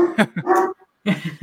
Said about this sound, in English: Adam's dog is angry that we threw Han Solo.